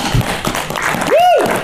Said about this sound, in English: Before we start, everyone, give yourselves a round of applause. Thank you so much.